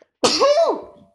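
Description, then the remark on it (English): A single loud sneeze bursts out, a sharp explosive onset with a tonal, voiced arc that trails off over about a second, with silence before it. “Ooh-wee, that was a sneeze and a half.”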